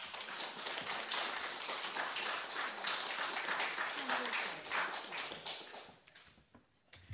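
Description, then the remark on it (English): An audience at a poetry reading in Ledbury applauds to welcome a poet: a steady, dense, crackling wash of many hands clapping together that holds for several seconds before thinning out and fading near the end. “And yes, I would like to welcome, if you'll give us a round of applause as well, to Elizabeth Jane Burnett.”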